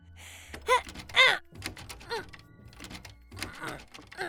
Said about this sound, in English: What are you doing? Oh, you startled me. Why are you trying to open that door?